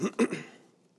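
A short, rough throat-clearing cough from a speaker going through a sick spell, in two or three quick harsh bursts, the first two strongest, then trailing off into quiet with no talking.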